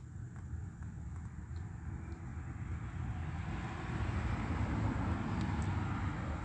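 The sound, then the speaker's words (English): An Ontario, California police helicopter's low, steady rotor rumble drones throughout at about 9:52 p.m., growing slightly louder toward the end, with no voices present. “Excuse me, the Ontario police that didn't go anywhere, sounding helicopter activity.”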